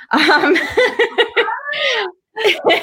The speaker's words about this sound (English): Oh, my cat's going to say hello, maybe.